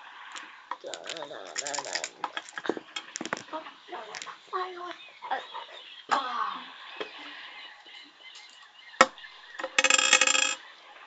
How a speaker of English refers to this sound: Roll percentile dice. You're looking for a low number. Which one is it? The two D10s, one in a row.